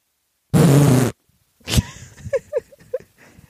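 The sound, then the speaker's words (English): A voice blows a loud, growling, raspy fart imitation lasting about half a second, meant as a dragon's fart, followed after a pause by a sharp tap and some brief vocal noises. “And what does a dragon fart sound like?”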